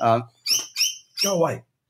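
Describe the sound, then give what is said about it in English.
A colourful Australian bird, likely a lorikeet, covered in bright blue, yellow, orange, red and green, gives four harsh, screechy squawks in quick succession, loud, with short gaps between each call. “These are basically birds that are covered in bright blue, yellow, orange, red, green.”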